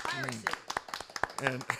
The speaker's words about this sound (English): Everyone. Golf clap. Yeah. Golf clap.